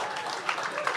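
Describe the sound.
A lone audience member claps a few scattered times over there, the sharp hand slaps standing out against a steady wash of background noise and indistinct voices.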